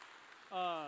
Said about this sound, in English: We got our hands ready to clap.